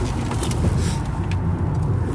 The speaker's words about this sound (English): Sorry, almost died. Need to make sure that doesn't happen again. Somebody swerved over my lane, had to swerve out of my lane to get away from that individual.